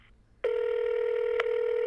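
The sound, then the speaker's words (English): A steady, single-pitched American telephone ringback tone on a call to Los Angeles starts abruptly and holds evenly, with a faint click partway through; no one speaks over it. “So notice the different ringtone from America?”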